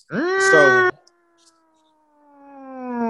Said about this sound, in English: And then for the, I think, third or fourth time in a flag on the play history, somebody cut on the siren. It is a double flag alert.